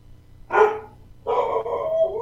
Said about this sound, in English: Let me see if I can quiet them. I have no idea why they're barking.